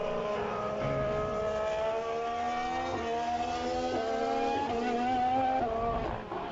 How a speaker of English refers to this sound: Sound, this is what it does sound. This is what an F1 engine actually sounds like. That was a Ferrari.